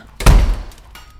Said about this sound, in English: How about now? I'm sort of used to being slapped.